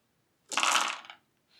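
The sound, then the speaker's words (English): Nine dice rolled in a tabletop game clatter and rattle together in a dense burst lasting under a second, followed by a brief quiet and a faint trailing rustle. “It's trying to do a head bite. 9 dice.”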